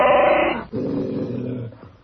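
A dog growls in two sustained, rumbling bursts, the first harsher and buzzier, then a brief pause before a lower, steady growl continues and fades out.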